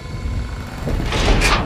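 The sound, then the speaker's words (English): A heavy door scrapes and rumbles open, a low grinding slide that swells into a broad hissing rush near the end, with no talking. “Doors, why is it so heavy?”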